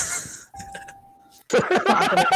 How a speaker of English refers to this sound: Can you guys really hear the Family Feud in the background? It's very loud.